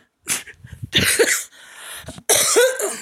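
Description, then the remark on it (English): A loud coughing fit brought on by laughing: several harsh, raspy coughs in quick succession with brief gaps between them, some sounding strained as the person tries to hold the cough back. No talking. “When I get to laughing, I get coughing. And I was trying to hold back that cough, and it wasn't working.”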